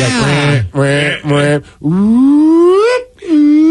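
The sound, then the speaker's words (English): A voice imitates a car alarm's cycling pattern, as in a Dane Cook comedy bit about car alarms: three quick repeated wails, then a long rising siren-like sweep, then a sustained steady tone, all loud and alone. “I forgot that whole, like, the cycle of alarms.”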